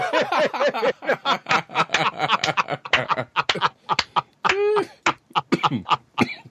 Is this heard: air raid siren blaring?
no